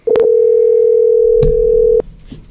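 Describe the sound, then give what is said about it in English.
A loud, steady telephone dial tone hums for about two seconds, marked by a few sharp clicks, then cuts off abruptly, leaving faint background noise, as a call is placed to someone from the Eastern States Cup. No one speaks. “Let's get Chris on the phone here.”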